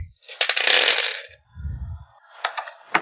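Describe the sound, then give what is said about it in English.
Dice clatter and rattle across a table in a busy burst, a low thud follows, then a few sharper clicks as they settle. Fairly loud, with no voices. “Gotta get dice.”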